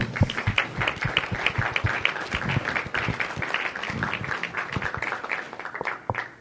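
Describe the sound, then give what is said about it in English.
An audience at an organization's awards evening applauds the award recipients, many hands clapping in a dense, steady patter that holds for several seconds before starting to thin out at the end. No one speaks over it. “So I'd like to give everybody an applause.”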